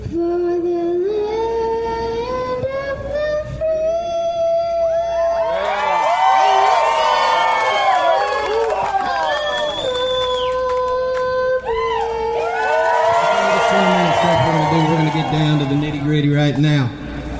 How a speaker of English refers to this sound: The national anthem was sung by a volunteer, a young boy, probably 11 years old. At one point, he forgets the words, and the crowd chimes in to help him along.